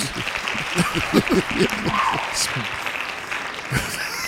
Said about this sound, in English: Hey, engineer, give you a round of applause, man. Give him another one. Give him another one on that one.